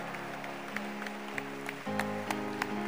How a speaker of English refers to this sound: Clap your hands for Jesus. Keep clapping. And as you are clapping, ask your friend, by the way, what are you hiding? What are you hiding? Keep clapping and ask somebody.